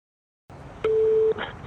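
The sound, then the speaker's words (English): A single loud, steady telephone tone lasts about half a second, bracketed by sharp clicks over faint line hiss, like a phone line being dialed before a call connects. “And then they left, and then this phone call was made.”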